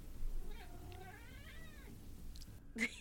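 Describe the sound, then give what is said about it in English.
A male cat indoors lets out a long, wavering meow that rises and falls, followed by a brief sharp sound near the end, set against a low, steady hum with no one talking. “Well, the cat is in here, so you might hear him.”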